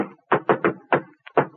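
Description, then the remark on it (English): A patterned knock on a door: three quick raps, a pause, a single rap, then a soft tap followed by one last firm knock. Each hit is loud and hollow, with no voices. “Say, that sounds like the Harvard knock.”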